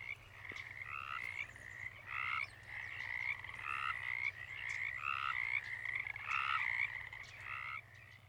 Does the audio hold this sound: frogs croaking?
yes